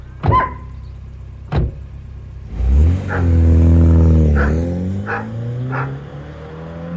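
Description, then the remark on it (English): Two sharp car door slams, then a police car's engine starts up and revs steadily as the vehicle drives away, carrying a man going to help the police, with a few faint knocks over the engine hum and no voices. “Was that Ernest in the police car?”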